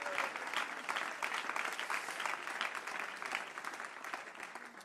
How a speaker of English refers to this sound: If you believe that, would you clap your hands unto the Lord and give him praise?